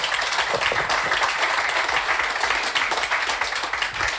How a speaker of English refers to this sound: I think that deserves a round of applause on that alone.